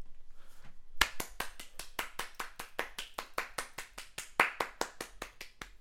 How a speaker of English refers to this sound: Might have to put some claps in there.